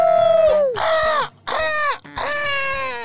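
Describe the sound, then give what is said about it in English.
A human voice mimics a vulture call with four loud, raspy squawks in quick succession, each one starting high and sliding downward in pitch. “I realized that I just sounded like an elephant, more like a vulture there, but...”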